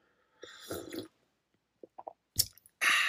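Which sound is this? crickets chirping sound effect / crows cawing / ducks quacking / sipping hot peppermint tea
sipping hot peppermint tea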